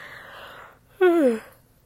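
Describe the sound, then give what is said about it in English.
A single yawn: a long, breathy intake of air, then a brief voiced groan that slides downward in pitch and fades out. No one speaks. “Sorry, I yawned and I don't edit my episodes because I don't really care that much.”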